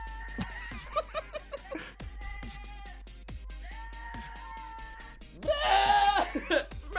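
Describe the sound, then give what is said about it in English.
A real goat lets out a string of loud, quavering, human-sounding screams, a few short cries followed by one long wavering yell near the end, sounding a bit tinny as it plays from a laptop. “Nope, that's a real goat.”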